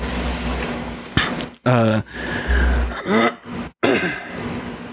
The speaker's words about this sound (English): Sorry, I keep having to clear my throat.